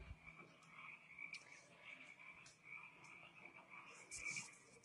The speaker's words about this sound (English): Yeah, some loud ass crickets. Well, about time to turn. Or frogs? No, it's crickets, I guess.